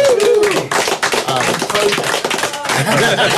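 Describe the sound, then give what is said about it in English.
A loud, steady burst of applause for the sponsor API, many hands clapping in a dense, continuous patter for a few seconds, with a few voices faintly mixed in. “Yeah, they get a round of applause.”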